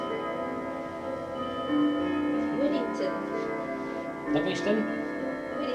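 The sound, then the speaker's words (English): A clock rings out its Westminster chimes, sustained bell-like tones humming and overlapping steadily, with a faint voice murmuring briefly underneath. “And I think, I'll pause for the Westminster Chimes.”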